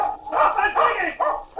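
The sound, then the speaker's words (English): A duck hunter's dog, Biff, barks excitedly while digging a deep hole in the soft sand of a beach with ducks overhead: a quick run of four loud, harsh barks packed into under two seconds with only brief gaps between them. “And after all the years he's been hunting, digging up a dead fish and barking his head off with ducks overhead.”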